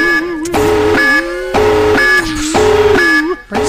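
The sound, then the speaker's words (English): A loud klaxon alarm blares in repeated harsh, buzzy blasts, each about half a second long, with a slightly wavering pitch, sounding continuously for several seconds before cutting off. “Let us move on now to, here is the klaxon alarm.”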